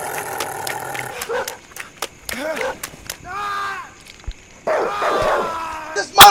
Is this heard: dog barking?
yes